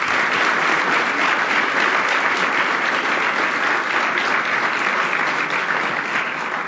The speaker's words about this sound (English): A round of applause, please, once again.